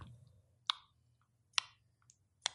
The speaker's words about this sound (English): So normally you would think of that as a clock, and it is a clock, but it's slow. The clock is not at 60 beats per minute. So the clicking is slower than 60 beats per minute. It starts off slower.